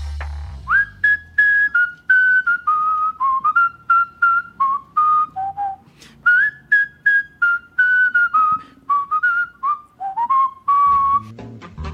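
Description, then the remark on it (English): A skilled, bright breath-whistled theme tune by a world champion whistler plays alone, a lively melody in short, clearly articulated phrases with brief breaths between them and no voices. “That's the great world champion, … from Binghamton, New York, doing that breath whistling.”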